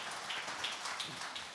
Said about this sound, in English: Brilliant. Thanks so much, Ryan. Let's give Ryan a round of applause, can we? Thanks so much.